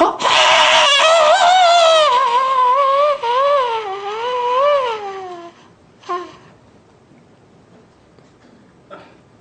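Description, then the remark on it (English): A loud, high-pitched, wavering keening whine, like a wheezing dog, made by a man's voice deep in his throat, lasting several seconds, then a brief, sharp vocal squeak and a faint click near the end. “And then he made a weird, high-pitched keening noise, deep in his throat, like a wheezing dog.”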